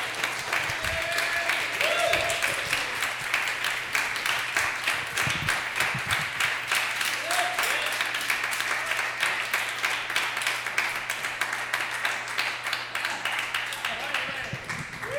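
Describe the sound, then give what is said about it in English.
Sustained audience applause for a performer at the end of his set at a monthly show, a dense, steady wash of many hands clapping for about fifteen seconds, with a few brief voices and a low hum faintly underneath. “Clap for him!”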